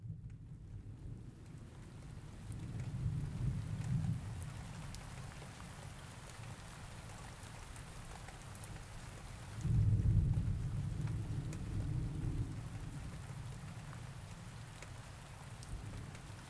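Steady rain hisses throughout, with two deep rolls of thunder rumbling underneath, one brief and softer early on and a louder, longer one midway. No one speaks.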